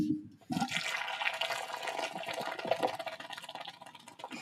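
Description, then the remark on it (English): A fizzy drink is poured into a cup, a steady rush of liquid with a bright foaming hiss that runs for about four seconds after a brief start. “Pour me one right here. Pour me one.”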